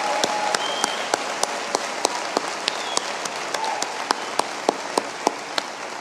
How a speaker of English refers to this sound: For you children's workers, that was called applause. We don't often hear that noise, those of us who have given our lives in ministry to children, but that was a very sweet sound.